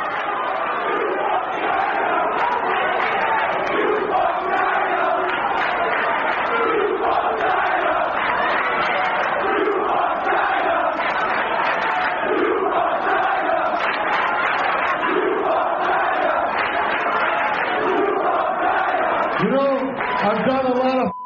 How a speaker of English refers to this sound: Anyway, we jump straight to the October 20 Hardcore TV. We open in Queens, New York, with a rabid crowd and Joey Styles.